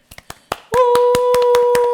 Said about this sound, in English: I decided that I was done watching Law & Order. Claps for me.